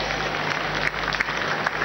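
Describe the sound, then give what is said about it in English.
A crowd claps for Jesus Christ, steadily, a dense wash of many hands with a few sharper individual claps standing out, loud and sustained with no one speaking. “Let's clap for Jesus Christ.”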